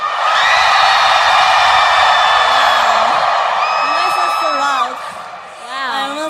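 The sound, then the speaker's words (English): A huge festival crowd screams and cheers in a loud, sustained roar of overlapping high-pitched voices as they are urged to scream as loud as they can. Toward the end a voice calls out over the din as it eases slightly. “I want you all to scream as loud as you can. Let me hear you, Coachella!”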